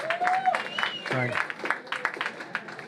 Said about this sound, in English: The venue here is The Blocks. Big round of applause for The Blocks.